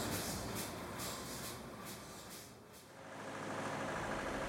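A truck engine idles, a steady low rumble with a faint rhythmic pulsing that softens briefly partway through before settling back to a constant drone. No one speaks.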